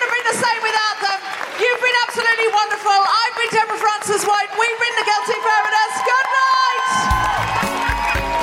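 A crowd cheers and whoops loudly and steadily for several seconds, a dense wash of high-pitched shouts, with a broader burst of clapping and noise building near the end.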